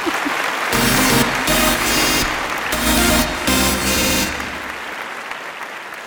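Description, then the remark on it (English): An audience applauds with a dense, steady wash of clapping that swells loudly for several seconds, with a bright musical sting playing underneath, then thins out toward the end. “Give him an applause.”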